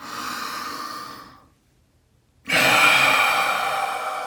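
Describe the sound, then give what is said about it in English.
In a guided breathing exercise, a steady breath is drawn in through the nose, a brief pause, then a louder, breathy exhale pushed out through the mouth like a long sigh, alone with no talking. “So we're going to inhale in through the nose and exhaling out loudly through the mouth.”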